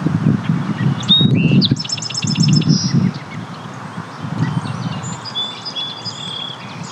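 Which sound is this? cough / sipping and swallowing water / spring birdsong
spring birdsong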